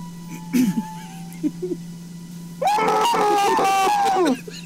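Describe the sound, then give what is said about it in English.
A voice acts out a shrill, sustained scream lasting nearly two seconds, preceded by a few short, strained whimpering sounds and a quiet pause. “Just then, he started to scream.”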